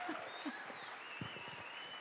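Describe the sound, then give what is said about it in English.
An audience claps steadily, many overlapping hand claps blending into a soft, continuous patter at a fairly low level, with no voices over it. “Where's the clap at, Chappie? Oh, there you go.”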